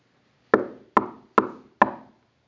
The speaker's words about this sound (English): still he knocks.